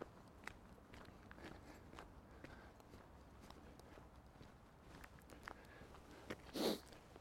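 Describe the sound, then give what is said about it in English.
A quiet stretch of faint shuffling and light tapping, then one sharp sniffle through the nose near the end. No one speaks. “excuse me, I'm sniffling still.”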